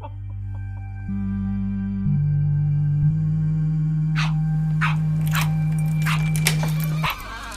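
A dog named Cooper, waiting for a chicken-flavored treat, gives a quick series of sharp, excited barks and yips with whimpering, starting partway through over a steady low hum that runs the whole time.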